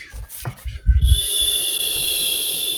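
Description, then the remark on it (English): A steady, airy exhale through pursed lips, a breathy silent whistle with a faint high tone running under the hiss. It holds evenly for about two seconds after a few soft low thumps. “Now breathe in and now silently whistle.”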